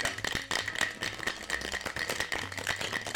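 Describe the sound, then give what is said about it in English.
Ice rattles hard inside a cocktail shaker, shaken in a fast, steady rhythm of bright clattering knocks that continues without pause for a few seconds, with no one talking. “Until you start getting the coldness on your hand.”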